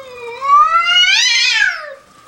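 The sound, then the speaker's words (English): An indoor cat inside a house lets out a single drawn-out yowl, loud, rising in pitch and then sliding back down over about two seconds, at a bobcat on the porch looking into the house, with no talking. “Side on a porch, looking into somebody's house, and the indoor cat's flipping the fuck out. That's what you hear.”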